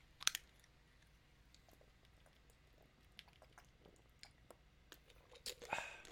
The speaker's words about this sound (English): That was like a half a bottle sip. Excuse me.